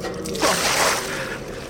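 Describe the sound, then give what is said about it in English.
A single quick splash of holy water thrown out in one wet, hissing burst that fades after about half a second, with no talking over it. “Holy water.”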